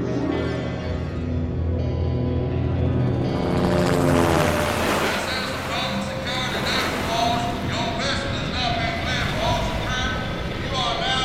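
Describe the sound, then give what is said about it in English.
A helicopter approaches, its rotors and engine making a loud, steady, throbbing drone that fills the whole stretch and swells slightly as it draws nearer. “The Navy was the first to detect the ship as it anchored for the wide open sea, and soon the helicopter.”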